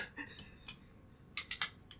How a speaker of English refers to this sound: I will already take your fucking dice. I hit the button and 5 seconds in, you're already annoying me with your dice.